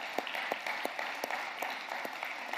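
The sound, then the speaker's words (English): A crowd applauds steadily, a dense wash of many hands clapping with a few sharper individual claps standing out at a moderate, even level throughout. “I think that is something worth clapping about.”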